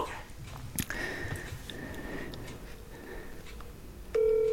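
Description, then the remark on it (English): A telephone call being dialed a second time: faint electronic tones over a noisy, rustling background, then a loud, steady ringing tone cuts in abruptly near the end. “I'm going to double call him so he knows how important this is.”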